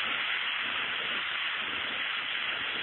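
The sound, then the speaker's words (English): Sleet falling in a steady, dense hiss, an even wash of fine crackling patter that holds at the same level throughout, with no voices or other sounds. “I don't believe that's rain. It sounds more like the sleet that we had a little earlier.”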